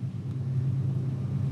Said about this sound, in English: I'm not used to that train.